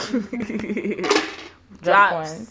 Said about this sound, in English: Drop coins.